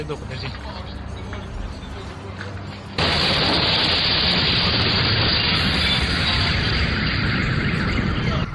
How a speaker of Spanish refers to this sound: escuchen otra vez la explosión para que nos digan qué creen que es.